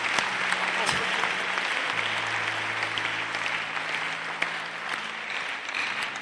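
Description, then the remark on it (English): An audience claps in a steady, dense wash of applause lasting several seconds, with a low sustained hum or organ tone underneath. “If you want to clap, to do it well.”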